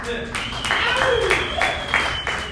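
An audience at a stand-up comedy set applauds itself for being attentive, with distinct claps landing in a loose, steady rhythm over a murmuring room and a faint steady tone in the background.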